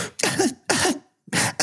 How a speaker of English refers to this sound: Your cough is coming back. You've got to take better care of yourself.